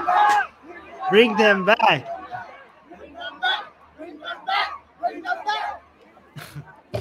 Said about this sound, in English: I think they're chanting. Oh, they're chanting right there.